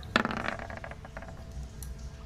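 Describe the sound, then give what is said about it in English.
Dice clatter onto a hard table with a sharp first knock, then rattle and tumble in a quick series of light clicks before settling, rolled for a check. Fairly quiet, with no voices. “Jesus Christ, the dice tonight.”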